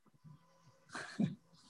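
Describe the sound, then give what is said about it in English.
A dog lets out a brief vocal noise, a short breathy burst rising and falling over about half a second, fairly quiet, with no one talking. “He wants to learn Torah, your dog.”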